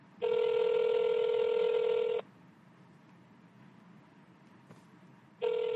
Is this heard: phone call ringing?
yes